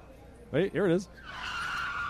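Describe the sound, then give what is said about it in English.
Two quick, warbling tire screeches from a skidding racing car ring out loudly back to back, then give way to a steady, hissing roar that carries on at moderate volume. “A racing car sound with people screaming.”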